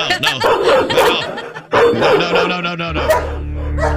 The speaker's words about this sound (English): Just the sound of a dog calms me. Oh, maybe not that one.